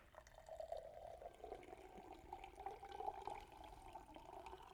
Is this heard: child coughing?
no